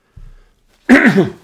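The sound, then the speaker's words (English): A single loud cough from a person getting over a cough, a short harsh burst with a rough, raspy tail, preceded by a faint low rumble and otherwise surrounded by quiet. “Excuse me, I'm getting over a cough here.”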